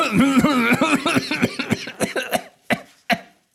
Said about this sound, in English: Oh, that's a lot of coughing. Did you inhale the smoke?